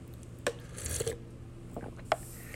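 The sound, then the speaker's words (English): A quiet sip of tea, with a brief airy slurp in the middle and a few soft clicks of a cup being handled before and after, over a low steady hum with no talking. “Let me sip this tea.”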